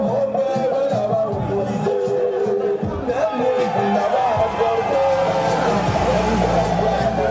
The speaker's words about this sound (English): Charles has just left the main stadium where he did his speech and a huge crowd has followed him. This area, which is a Gbagbo stronghold, is being led by men with AK-47s and rocket launchers, and all around him the supporters singing his praises.